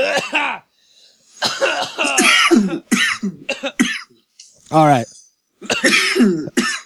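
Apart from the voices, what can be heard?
repeated coughing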